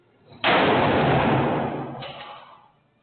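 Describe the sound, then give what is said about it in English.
A single loud gunshot in video footage, fired by a police officer at a man standing right up against a door, cracks out suddenly, followed by a long, rumbling decay that fades over a couple of seconds, with a faint second thump partway through. No one speaks. “You can see that when he fired at him, he was right up against the door.”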